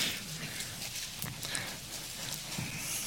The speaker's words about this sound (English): We're gonna read Acts 13 now, verse 1. See pages turn, I mean I don't see, I hear pages turning.